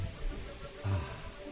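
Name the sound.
shower water running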